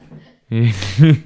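A loud, honking nose blow right into the microphone: a sustained rush of breathy noise with a buzzing nasal tone that swells into a stronger second burst before cutting off.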